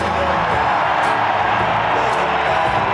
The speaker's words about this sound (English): Nice round of applause.